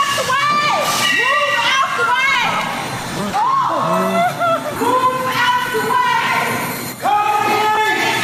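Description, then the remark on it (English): Several bystanders yell and shout in alarm as a car is driven into a Home Depot store in Alabama, their raised voices overlapping loudly, someone yelling to get out of the way, with urgent cries rising and falling continuously throughout. “Now, here's a clip from one of them where, you know, somebody is yelling, get out of the way.”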